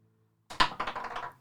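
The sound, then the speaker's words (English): A large thirty-sided die hits hard and then clatters in a quick run of small rattling bounces for nearly a second, bright and clicky, with no voices over it. It rolls off a table. “I would have said nat 20, but that's a 30 side dice.”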